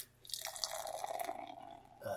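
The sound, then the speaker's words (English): A 5% ABV Uinta beer, deep straw to caramel-gold with an off-white foamy head, pours steadily into a glass for about two seconds, with a foamy fizzing hiss and a gurgle that rises in pitch as the glass fills. “And the pour.”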